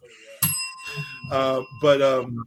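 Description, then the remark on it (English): A hand bell is struck once, sharp, its bright metallic tone ringing out for over a second as voices keep talking around it. “That's the first time anyone other than in 300 episodes, the first time someone's rang the bell other than me, and it was very appropriate.”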